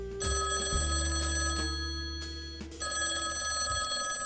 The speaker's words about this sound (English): So it totes pissed me off when my phone rang at 11 o'clock in the morning.